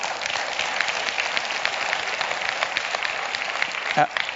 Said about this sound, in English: I appreciate the clapping.